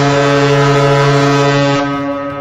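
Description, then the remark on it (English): A single loud, deep, brassy blast from a Kurt's High Performance Car Horn, an air horn filled by siphoning exhaust pressure into an air bladder at over 200 PSI, holds steady for nearly two seconds, then cuts off into a short fading tail, with no voices over it. “And here's a Kurt's High Performance Car Horn!”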